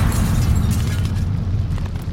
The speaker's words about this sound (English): I ran for all I was worth until a colossal explosion blew me off my feet and threw me to the ground.